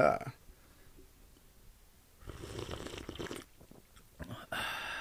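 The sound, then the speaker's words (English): A slurping first sip from a drink, a noisy airy draw lasting about a second, followed by a few soft breathy sounds and a final louder rush of noise. “We love the fact that we could feel that first sip you're taking, bro.”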